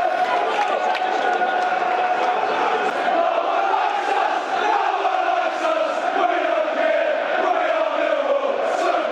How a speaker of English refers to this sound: Good tackle, George Evans. Listen to the roar for that crunching tackle.